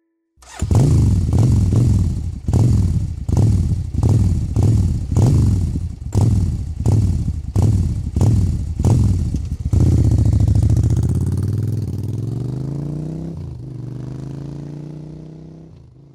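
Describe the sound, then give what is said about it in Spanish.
A motorcycle engine revs in a quick, steady series of loud throttle bursts, then holds one long roar that climbs and falls before easing down toward a lower idle. No voices. “Sí, el sonido sorpresa fue el de una motocicleta.”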